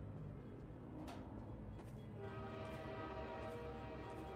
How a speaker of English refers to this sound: I'm going to catch this train. We're going to hobo.